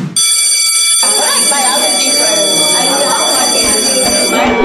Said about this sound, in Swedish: Då ringer det klockan.